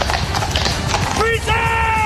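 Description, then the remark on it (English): A dense, continuous clatter of the hooves of hundreds of horses, carriages and cavalry at the Royal Rehearsal, on a hard surface, overlapping into a busy rhythmic din, with a brief high tonal cry breaking through near the end. “The carriages, the cavalry, the clip-clop of hundreds of horses.”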